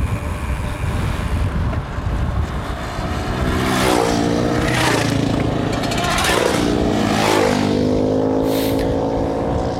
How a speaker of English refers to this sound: But, oh, some motorbikes.